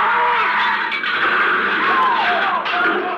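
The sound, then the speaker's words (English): Tires screech loudly and continuously for a few seconds, a harsh, sliding squeal with wavering pitch, like a car skidding hard under heavy braking, just before a crash, with a truck ahead. “A truck! Look out!”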